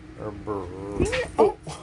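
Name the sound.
dog whining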